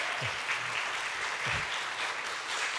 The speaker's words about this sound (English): Let's give a … another round of applause.